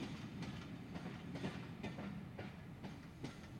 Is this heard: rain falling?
no